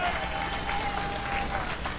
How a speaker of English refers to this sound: Give the Lord. He's worthy. He deserves a huge round of applause.